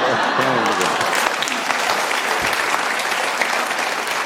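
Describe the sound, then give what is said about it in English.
A studio audience bursts into loud, sustained applause and cheering, a dense wash of clapping with scattered whoops that holds steady for several seconds. “The crowd's like, yeah. The crowd falls out of their chairs.”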